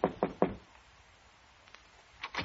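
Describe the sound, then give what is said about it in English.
Three firm, evenly spaced knocks on a wooden office door, loud, followed by a quiet pause and then a couple more quick raps at the end. “so I knocked on the door.”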